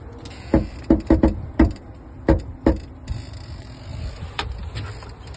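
Rain falling outdoors where there is snow, with a steady high hiss and low rumble beneath a scattering of loud, irregular drops tapping. No one speaks.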